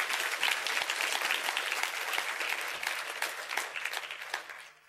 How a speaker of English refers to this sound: Come on, if you're ever going to clap, now's the time to clap and say, "Thank you, Jesus."